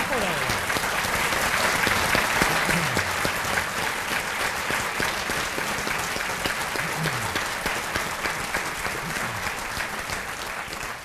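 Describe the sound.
A crowd applauds steadily for about eleven seconds, a dense, even wash of many hands clapping at a constant loud level, with faint voices mixed underneath; the applause is for two teachers, one of whom has long played Lincoln.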